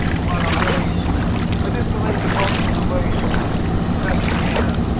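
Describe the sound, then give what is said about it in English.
A fishing boat's engine drones steadily, a low hum running through the whole stretch, with wind and splashing water washing over it in irregular surges. “Did you guess you were a sailor on a fishing boat?”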